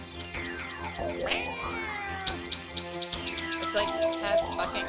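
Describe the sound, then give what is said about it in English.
A short bumper jingle of loud, swooping, wailing yowls that slide up and down in pitch like caterwauling alley cats, layered over steady droning tones and continuing throughout. “It's like cats fucking in an alley.”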